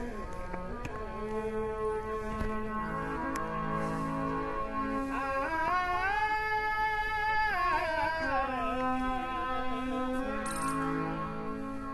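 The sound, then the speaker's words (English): A traditional Indian harmonium, played by a man sitting cross-legged, plays a slow, reedy melody of sustained notes over a steady low drone, with the pitch rising and falling. It is continuous and moderately loud, with no voices. “That's a traditional Indian harmonium you can hear there.”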